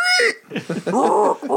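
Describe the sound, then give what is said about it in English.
A man imitates a pig squeal with a shrill, strained burst of high-pitched voice, followed by a few choppy, squawking vocal sounds, loud throughout. “Been practicing squealing. I'm ready.”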